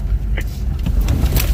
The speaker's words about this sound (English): In a convoy training video, the men are wearing body armor and carrying rifles. They're driving several trucks in a tactical formation, basically practicing looking for bad guys.